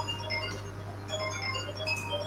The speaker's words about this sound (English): Phone going off. Whose phone is that? Is that your phone?